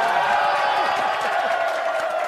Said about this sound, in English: And the crowd, the whole room erupts. They all jump on him, and it's really cool.